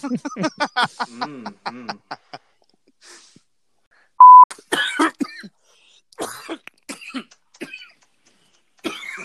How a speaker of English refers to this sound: We're gonna have to take this out. I'm coughing, bitch. Can't just have me coughing.